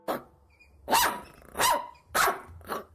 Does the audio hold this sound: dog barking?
yes